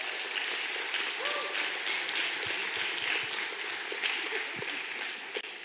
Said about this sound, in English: So as you know, it is Pastor Appreciation Week, and we're going to just take this time to honor our pastors. How many of you love your pastors? Can we get a clap?